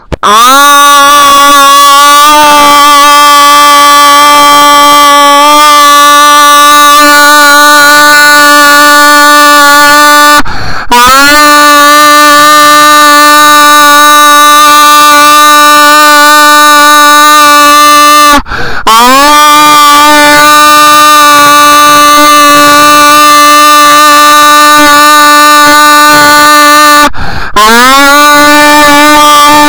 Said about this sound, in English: Hi, and this podcast will just be me yelling into a mic for a little bit. Well, like a minute. Okay, starting now.